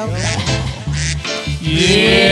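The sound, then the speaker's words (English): A person loudly imitates a duck, making a run of nasal, buzzy quacks in quick succession, with no other voices. “Do you like ducks or chickens? Give me a duck.”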